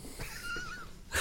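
A single drawn-out, wavering cat meow sung like a musical note as cat music, clear, ending with a brief breathy burst; no one speaks.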